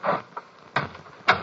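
A door is pushed shut, giving a few short, dull thumps and clatters at uneven intervals, the last one loudest, with no voices.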